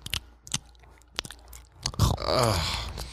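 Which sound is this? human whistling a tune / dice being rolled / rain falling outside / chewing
chewing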